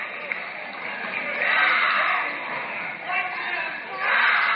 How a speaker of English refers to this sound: Looks like the Perry cheering section, the Perry student section, mostly females over there.